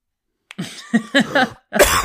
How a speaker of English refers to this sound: And then cough.